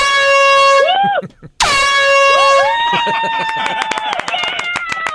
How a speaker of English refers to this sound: Let's give them two air horns. Hang on.